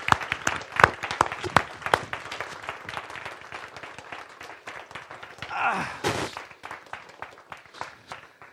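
A crowd applauds to welcome two new men into the eldership and to thank a family for their service, dense overlapping claps at a strong, even level throughout, with a brief rising voice or cheer partway through and no speech.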